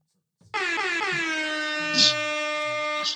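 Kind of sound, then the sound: sound effect, air horn blast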